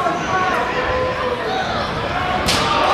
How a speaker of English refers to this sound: Felt that over here. Ooh. You hear those slaps, those chops going back and forth.